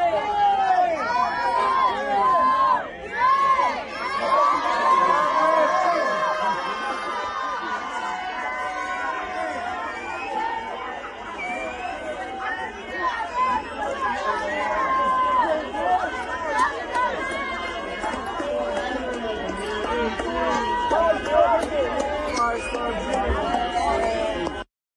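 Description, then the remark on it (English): A large outdoor crowd at a balloon release during a vigil in Seattle, so big that police closed MLK for about 2 hours, fills the whole stretch with loud, steady voices, overlapping chatter and calls blending into a continuous roar that rises and falls slightly without pausing. “And then also I got some video right here. This is a balloon release.”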